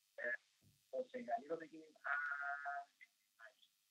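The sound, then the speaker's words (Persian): Television sound, mostly voices, from a caller's television in Karaj bleeds through a telephone line during a call-in program, thin and band-limited, in short broken bursts with brief gaps between them. “اگر ممکنه صدای تلویزیون تو کم کن، با هم دیگه از تلفن صحبت کنیم.”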